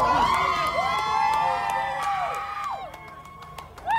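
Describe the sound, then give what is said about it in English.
A crowd of supporters outside a courthouse cheers and whoops continuously as a man walks out after a court decision, many overlapping high voices shouting and yelling together, loud throughout with a few sharp whistles and calls rising above the din. “They had gathered to witness this decision, and as he walked out, he was greeted with cheers from some of his fans, if you can call it that, or supporters.”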